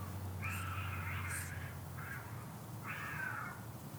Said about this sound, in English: Well, that's a straight-up cat fight. Luckily, I'm pretty sure our cat's inside. It's over. Wow. Haven't heard that in a while. Everything's okay. Don't worry. It's pretty exhilarating. We just got a cat fight on record.